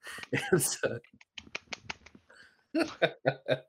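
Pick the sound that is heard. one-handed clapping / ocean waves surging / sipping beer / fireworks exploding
one-handed clapping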